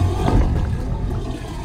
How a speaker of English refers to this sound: This is part of a wave organ. It's a musical instrument that's basically played by the waves and the changing tides.